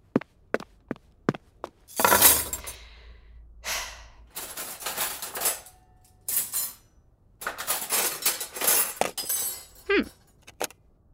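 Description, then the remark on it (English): Silverware, with a plastic fork among it, clinks and clatters as it is sorted: a quick series of sharp metallic taps, then several bursts of jangling, rattling handling, with a few bright clinks near the end. “Now, if you'll excuse me, I'm going to pretend my life problems don't exist and sort through the silverware.”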